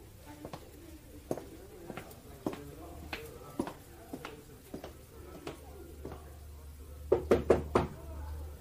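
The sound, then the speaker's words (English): Steady knocking on a wooden door, about a dozen single raps spaced out evenly, then a quick burst of four harder knocks near the end, with a low room rumble underneath. “No need to stand knocking, my dear.”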